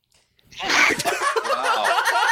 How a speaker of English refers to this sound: Wow. You guys have a sneeze button or something?